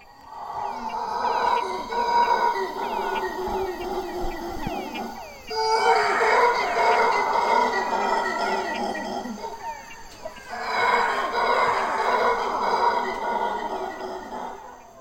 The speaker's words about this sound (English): The howler monkeys are featured prominently. Tell me about those. There were howler monkeys everywhere.